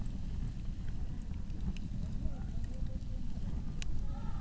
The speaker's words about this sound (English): Ah, that campfire, you know.